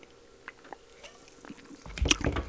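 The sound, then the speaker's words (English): Someone sips a beer in a hotel room: a few small wet mouth clicks in near-silence, then a louder slurping gulp and swallow toward the end. “Take a sip of this.”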